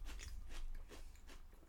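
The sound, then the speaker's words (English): Crunchy chewing of a dry ranch-flavored snack mix, with repeated bites and crackling crunches in an irregular rhythm, heard alone without any talking. “As he eats more of them. I like the ranch. The ranch is good. The ranch flavor, it's crunchy, it has a little saltiness to it, and then has that ranch flavor.”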